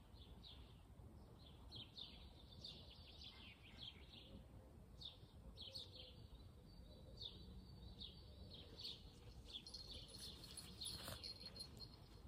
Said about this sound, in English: And of course, my favorite, the birds.